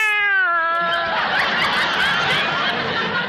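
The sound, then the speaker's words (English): A single drawn-out meow from a female house cat, loud, sliding downward in pitch, then giving way to a dense, hissy wash of noise that carries on to the end. “The way this cat eats is a caution.”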